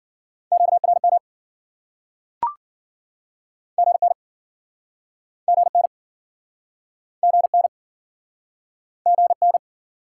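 Fast Morse code at 40 words per minute, a steady mid-pitched tone sent in short clusters of rapid beeps with pauses between groups. A single sharp click interrupts early on, and no one speaks.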